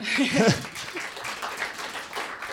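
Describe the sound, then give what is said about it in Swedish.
An audience in Umeå breaks into steady applause, a dense wash of many hands clapping at once, with a brief vocal cheer or whoop rising near the start. “En applåd för det.”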